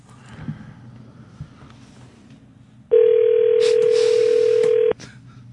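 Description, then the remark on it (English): A telephone line rings once, a call to a payphone in L.A.: a single loud, steady mid-pitched tone lasting about two seconds, rising out of quiet background hiss and then cutting off abruptly. “I'm not hearing a ring or anything else.”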